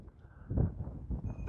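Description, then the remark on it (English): A chocolate Labrador dog barks at a person a few times in short, rough bursts, moderately loud, with no one speaking over it. “Sorry, there's a dog here. Looks like a chocolate lab.”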